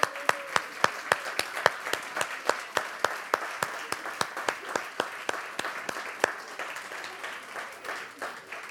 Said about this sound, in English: If you could all stand, and we're going to honour you by clapping you and cheering and just showing a bit of honour. So if you're a mum, a grandmother or a mother figure and you can stand, please stand so we can honour you.